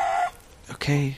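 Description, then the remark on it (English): A free-ranging bird on the ground calls twice, a short nasal cluck followed after a brief pause by a lower, throaty one, both fairly loud against a quiet background. “That bird is just around on the ground.”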